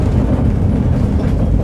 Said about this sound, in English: The train's a little full this morning, so I'm standing up looking out one of the large windows of the L train.